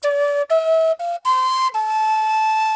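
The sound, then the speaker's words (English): The lead melody of a pop song is whistled: five clear, sustained notes stepping up and down in pitch, the last one held longest, with no talking. “can you whistle it for us?”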